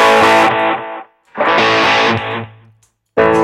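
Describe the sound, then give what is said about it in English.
A distorted electric guitar plays loud, thick, buzzing chords through an Axe-Fx multi-effects processor while the player presses foot buttons to cycle through tones. There are three bursts separated by short silences, with one low note ringing on alone before the last burst. “I'm just trying to find the tone on the axe effects.”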